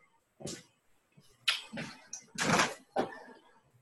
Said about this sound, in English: Pulling something out of the refrigerator right now.